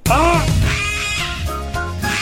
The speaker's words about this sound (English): Anyway, I was struggling to hear what the guys were saying because there was this damn crow on top of the roof of the grandstand and it wouldn't shut up. And this is the sound you're about to hear.